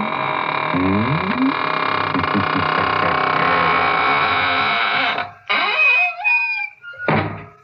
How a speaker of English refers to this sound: And now it's time to close the squeaking door, so good night.